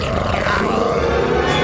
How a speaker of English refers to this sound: Suddenly, Pierre heard a terrifying, angry roar. What was that? What kind of creature could make a sound like that?